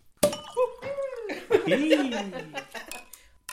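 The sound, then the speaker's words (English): Glasses clink together in a toast to the end of the year with Rotkäppchen, a German drink, amid excited cheering and laughter from several people, with a few sharp clinks scattered under the lively voices. “Now we've all got together today to toast the end of another year.”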